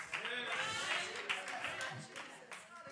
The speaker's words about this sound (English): Praise God. I appreciate you clapping, but sometimes I got to quit so I can keep on preaching. Y'all keep on clapping.